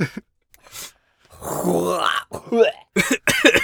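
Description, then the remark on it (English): A voice pronounces a name with a phlegmy, throaty, cough-like rasp, a gravelly growl with hoarse bursts. It is fairly loud, with short voiced fragments around it and brief gaps between. “The coughs are actually accentuated in it.”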